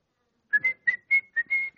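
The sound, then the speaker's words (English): A short, bright whistled tune in quick, separate notes, clear, with steady pitched tones and a brief breathy onset before each note. “How many of you whistle?”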